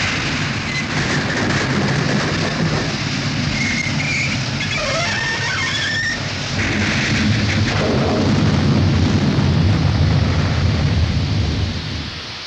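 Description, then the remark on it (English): A steam train derailing and crashing after its engine struck a tight curve and a rail sprang out: a heavy, continuous rumbling roar with scraping metallic screeches midway, swelling louder in the second half before cutting off, with no voices. “The engine struck a tight curve. A pent-down rail sprang out like a knitting needle and...”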